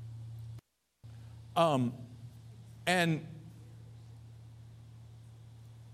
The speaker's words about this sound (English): Man, there's a hum. You guys hearing that? I'm hearing that hum. It's just really distracting.